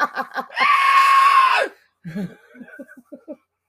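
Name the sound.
high-pitched scream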